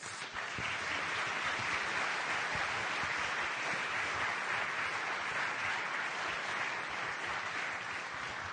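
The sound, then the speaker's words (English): Steady applause from a crowd welcoming a man as he walks up the stairs, a dense, even wash of many hands clapping at once with no talking over it. “Get clapped for when you walk up the stairs.”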